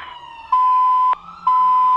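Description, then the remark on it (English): A police siren blares loudly, alternating between two steady electronic tones in a repeating hi-lo pattern, with no voices, as police head to an emergency call. “The police are already on their way.”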